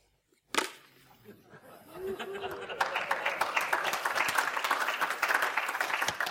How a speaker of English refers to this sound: Thanks for those half-hearted applause, there,